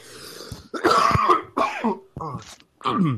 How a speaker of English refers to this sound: Sorry about that. Didn't get the cough button. I'm not sure. I have a little bit of a bug.